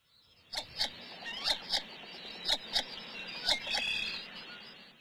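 A northern shoveler duck's call: a series of about eight short, dry, clicking clucks in an uneven rhythm, fairly high and raspy, over a faint hiss with no talking.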